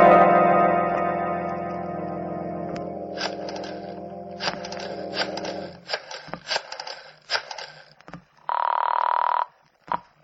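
Sustained droning tones give way to scattered clicks and clatter, then a telephone gives one short, buzzy ring near the end. No one speaks.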